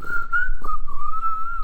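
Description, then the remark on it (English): A person whistles one long, sustained mid-pitched note that wavers slightly up and down, imitating a bird flying high. There is no talking over it. “Can you make the noise for us of your bird flying high?”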